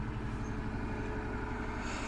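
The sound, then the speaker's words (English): A steady, rumbling motor drones, its low throb holding even and continuous as a tiny, noisy push boat, a stubby tugboat about 8 feet long that pushes bigger boats, churns past, with no voices over it. “It's a tiny little push boat. It's basically a tugboat that basically pushes the big.”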